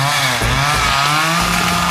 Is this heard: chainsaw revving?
yes